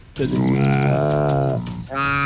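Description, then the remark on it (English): A deep, drawn-out antelope call, a loud moaning bellow lasting over a second, followed after a short break by the start of a second call. No one speaks over it. “That is an antelope.”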